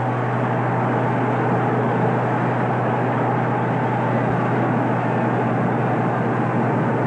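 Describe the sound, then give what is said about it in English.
A baseball stadium crowd roars and cheers as Willie Horton comes up to bat, in a steady, dense wall of noise that holds at an even, loud level for the whole stretch, with no individual voices standing out. “Cash trailing by three runs, wisely held up at first, and the batter is Willie Horton, and listen to the crowd.”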